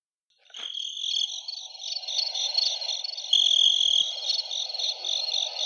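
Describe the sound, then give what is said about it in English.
Crickets chirp steadily in a continuous, pulsing trill that starts abruptly and fills the quiet, with a soft low hum underneath and no talking. “Where's the crickets?”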